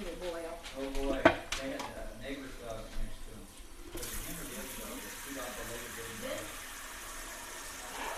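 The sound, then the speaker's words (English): Voices talk briefly, then a tap starts running, pouring warm water steadily into a pot for pasta, filling it about halfway. The hiss of water continues evenly, fairly loud, to the end. “This is gonna be for the pasta. About halfway.”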